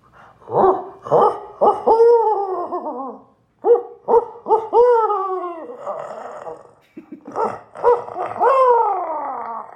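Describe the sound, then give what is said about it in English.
A person voices a barred owl call, three loud phrases of rhythmic hoots, each ending in a drawn-out descending note, separated by brief pauses. “Now the barred owl has its own call.”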